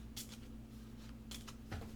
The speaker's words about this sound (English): pick a card. I just looked at them all. Yep, pick a card. I just shuffled them.